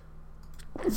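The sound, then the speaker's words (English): A single sudden sneeze bursts out near the end after a moment of quiet hum, sharp and breathy, not very loud. “Sneezes.”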